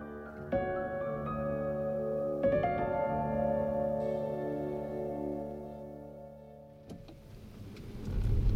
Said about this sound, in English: As a car drives itself away from the Zheng residence, rain blurs the world outside.